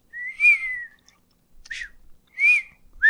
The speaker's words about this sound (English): Oh, I was going to whistle, but my mouth is too dry.